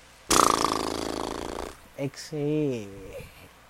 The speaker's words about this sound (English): It's just like breathing, you know. Inhale.